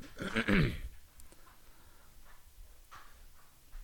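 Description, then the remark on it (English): A dog lets out one loud vocal burst with a falling pitch near the start. Quiet follows, broken only by a few faint clicks and soft rustling. “Listen, for these longer podcasts, half my time is spent distracting the dog.”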